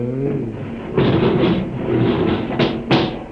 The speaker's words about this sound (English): Open the door